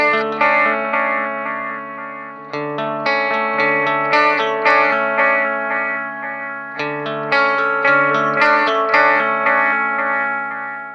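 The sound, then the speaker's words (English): An electric guitar phrase played with a delay effect like a guitarist would use, each picked note echoed back in rhythmic repeats that stack into a thick, shimmering layer. Steady and fairly loud, with no voices. “And if you took that same phrase from before, mm-hmm. and you added delay, mm-hmm.”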